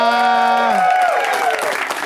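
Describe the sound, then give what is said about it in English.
A loud held, tonal note opens and slides downward, giving way to a dense wash of audience clapping and crowd noise that carries on steadily to the end, from the audience at the Upright Citizens Brigade Theater in Los Angeles, California. “You guys know when to clap.”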